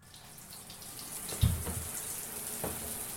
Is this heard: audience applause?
no